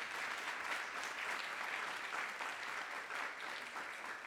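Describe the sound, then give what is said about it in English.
An audience at an event at Harvard's Belfer Center applauds CNN for supporting the Freedom Project, the dense patter of many hands forming a continuous, fairly even wash of applause with no voices standing out. “Well worth a round of applause.”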